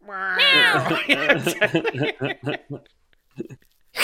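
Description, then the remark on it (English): A voice lets out a loud, drawn-out imitation of the meow of a big, bushy Maine Coon cat, its pitch rising and falling, followed by quick chattering vocal sounds and brief pauses. “It was D's Nuts, and he was like a Maine Coon, like a big bushy cat.”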